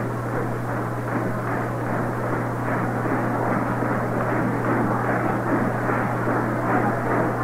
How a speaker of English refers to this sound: Still 3-2 on Rollins, and you can hear the Twins fans stamping and stomping.